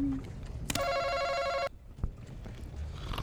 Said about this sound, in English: why are you hitting the answer buzzer and you're not saying an answer?